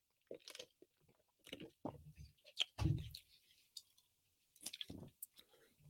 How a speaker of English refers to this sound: We're going to take a little sip of the big gulp and a little sip of the beer, and then we're going to move over to the AFC.